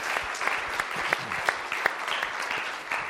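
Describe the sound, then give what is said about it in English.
A crowd claps steadily, applauding a group of people thanked for their support: a dense patter of many hands with a few sharper individual claps popping out, sustained for the whole few seconds without any talking. “So give that group a round of applause.”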